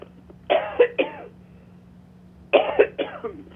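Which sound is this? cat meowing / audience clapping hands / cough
cough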